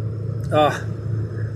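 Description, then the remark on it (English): A steady low engine hum and road rumble drone from inside a car driving through traffic to St. Louis University on a fine day in the mid-70s, with a brief voice rising over it partway through. “I'm on my way to SLU, St. Louis University, right now, fighting traffic.”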